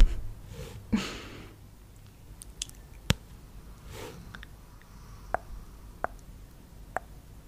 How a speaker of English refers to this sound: You can probably hear my dog snoring. She's in sleep mode as well.